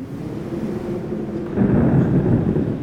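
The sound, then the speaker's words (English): A deep, steady rumble of thunder rolls through a stormy sky, swelling louder partway through and lingering as a broad low roar with no voices. “Lightning flared through the skies above, crossing through great gray clouds.”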